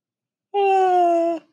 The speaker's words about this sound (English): Excuse me, I yawned.